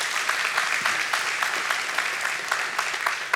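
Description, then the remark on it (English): An audience claps steadily for a few seconds for a group of friends invited up to the front, a dense patter of many hands at an even, moderately loud level, with no one speaking over it. “Yeah, give them a clap.”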